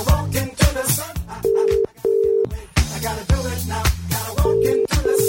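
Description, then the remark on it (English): A phone rings out on an outgoing call placed live to get a shout-out, its steady ringback tone sounding in short repeated bursts over busy, rhythmic background music, with no one speaking. “Let's see if we can get a live shout out of Greg. … Here we go. It's ringing.”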